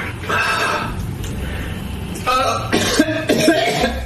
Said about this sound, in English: All right, he's already coughing and gagging.